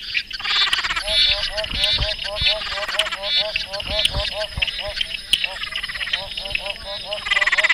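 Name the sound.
frog calls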